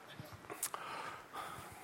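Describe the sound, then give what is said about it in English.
A man gives a short, quiet cough, a brief breathy burst partway through, with faint breathing and murmured voice sounds around it. “He's coughing here.”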